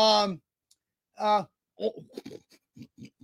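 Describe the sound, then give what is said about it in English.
A person imitates a frog croak during a game of imitating animal sounds, opening with two short, voiced calls, then a quick, uneven run of short, raspy croaking bursts, fairly loud. “That's a frog.”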